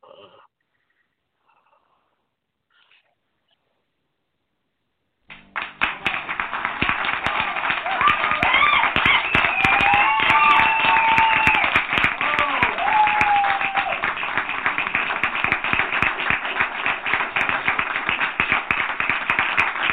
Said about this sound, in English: We're going to give a round of applause for everybody for listening today. I really appreciate you guys.